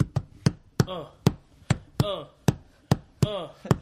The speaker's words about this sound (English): Give me a beat. It's on the bang on the table or something. I need something.